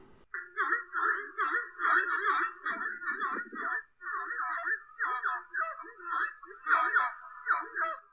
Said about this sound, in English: So now let's deal with their voice, because after all, they are called screamers. And do they scream? Let's find out. Roll the audio!